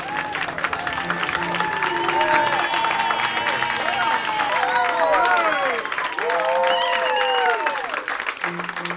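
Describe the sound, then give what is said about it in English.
A large live audience at the Uncle Dan's Story Hour holiday show applauds steadily for several seconds, with cheers and whoops rising over the dense clapping. The sound is loud and sustained throughout. “That's a good crowd tonight.”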